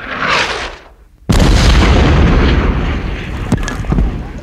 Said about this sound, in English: The stone above Terra cracked as a massive explosion shook their hiding spot. Run! Penelope shouted as their cover crumbled down toward them.